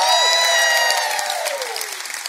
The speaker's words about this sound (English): Because y'all about the first church that I've heard yell as loud or louder for Jesus than you did for your favorite football team.